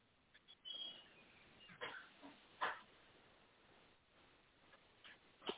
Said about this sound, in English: This dog is, I think he gets jealous, too.